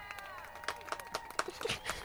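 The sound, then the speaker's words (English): A short burst of applause from a clap track: dense, irregular clapping at a moderate level, with faint cheering or whistling tones threaded through it for about two seconds. “Can you put a clap track in there for him?”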